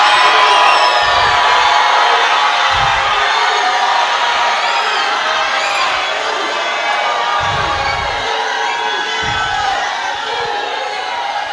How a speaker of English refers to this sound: We are shouting seven. Shout hallelujah. All right. The third step of faith. Shout hallelujah.